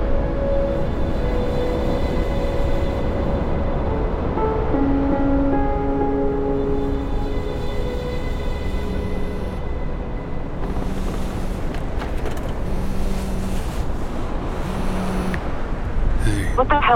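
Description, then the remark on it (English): A steady wash of ocean surf rolls on without pause, with sustained low musical tones layered over the continuous roar of the waves. “Listen to the waves.”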